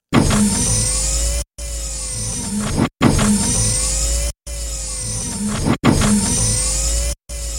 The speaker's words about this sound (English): And opened and closed the pod door about 100 times.